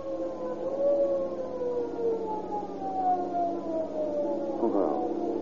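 A police squad car siren wails steadily, its layered tone sliding slowly downward in pitch, with a brief rough surge near the end and no voices.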